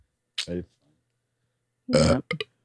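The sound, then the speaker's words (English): A short voiced burp comes first, then after a pause a longer, louder, rougher belch with a quick trailing gulp. “It wouldn't be a podcast without me burping.”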